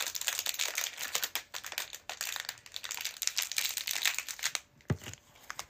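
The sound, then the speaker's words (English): Continuous crinkling and rustling of thin plastic as trading cards are slid into plastic sleeves, with soft scraping and a brief dull thump near the end. No one speaks. “Sleeving up everything. Everything gets sleeved.”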